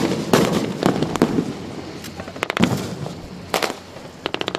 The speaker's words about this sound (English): At this point is when the fighting gets most intense. It's all dust and explosion sound.